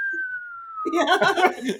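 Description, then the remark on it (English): A thin, steady slide whistle tone glides slowly downward in pitch for under a second, then gives way to a burst of laughter and chatter. “Slide whistle.”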